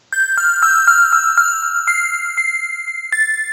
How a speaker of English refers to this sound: That sounds about right. That sounds about right. I can hear bells ringing all over the place, so that's probably very true.